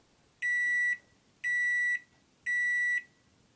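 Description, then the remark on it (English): Three loud, steady electronic beeps from a microwave oven signal the end of its cycle, each about half a second long and evenly spaced, with only faint background noise between them. “Those 3 little beeps pierce your eardrums to let you know that, hey, your burrito's finished.”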